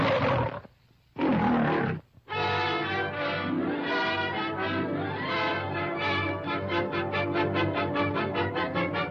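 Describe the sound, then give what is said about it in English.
Two loud animal roars open, followed by a long, rich rumbling sound that pulses rhythmically toward the end, with no talking. “The roar heard round the world.”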